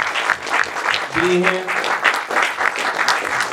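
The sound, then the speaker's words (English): An audience gives itself a round of applause, a loud, dense wash of clapping that holds steady for several seconds, with a brief voiced cheer or shout rising out of the crowd partway through. “Give yourselves a round of applause, right, man.”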